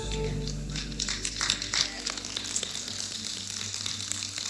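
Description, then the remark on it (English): An audience breaks into applause, a dense patter of many hands clapping at a steady, moderate level for a few seconds, with a low electrical hum running underneath. “I didn't think I was going to get a clap there, but I'll take it.”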